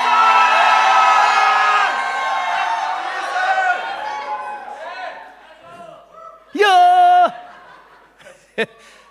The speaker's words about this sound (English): Number three, shouting. Come on, let's go. Let's go. Shout. Raise your voice.